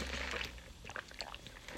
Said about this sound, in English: Sorry about that, guys. I had to get my Dunkin' sip in. You know me. Love my Dunkin'.